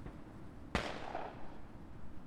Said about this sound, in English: But before he can pass out the helmets, a few British infantrymen who heard the grenade explosion spot Benetutti and open fire.